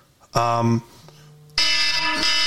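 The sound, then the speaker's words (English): An alarm blares in loud electronic tones: a short harsh burst, a softer steady tone, then a sustained, piercing ring that keeps sounding to the end. “I forgot there was an alarm set. That sounds terrible on the microphone.”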